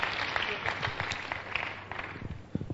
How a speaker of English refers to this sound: But they are clapping because they understand it very well.